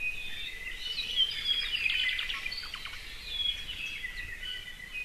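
A Hawaiian thrush sings a string of clear, warbling phrases mixed with quick trills, rising and falling over a few seconds against a soft hiss of forest background.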